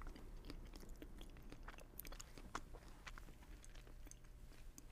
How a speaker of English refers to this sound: Not sure about the chewing